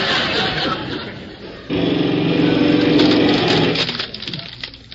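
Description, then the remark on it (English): A heavy construction drill grinds loudly and steadily with a droning motor whine as it breaks up through a floor, surging louder partway through before tapering off near the end, set against a rumbling, noisy background. “Now they're starting to drill.”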